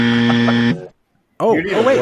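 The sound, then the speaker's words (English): A loud, harsh soundboard buzzer sound effect blares steadily for under a second and cuts off. After a short silence, someone starts talking. “Is there anything else in the soundboard that would fit? Queef. Is a doorbell. Is a buzzer.”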